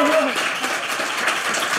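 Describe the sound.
An audience at a live show claps steadily to welcome a guest, a dense crackling patter of many hands that stays loud for the whole stretch, with a brief voice heard at the start.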